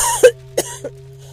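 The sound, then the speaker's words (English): A few harsh coughs in quick succession, three sharp bursts with a rough throaty edge, the first loudest, over a faint steady low hum; a person coughing to clear dust from their airway. “I cough to clear the dust from my airway.”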